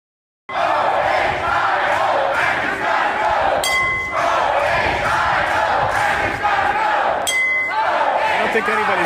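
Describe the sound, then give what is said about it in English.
A large crowd of protesters outside the State House shouts and chants continuously in a loud, dense roar of voices, with bright ringing clinks cutting through twice, briefly, in the middle and near the end. “protesters' message wasn't clear, but you may have been able to hear something going on.”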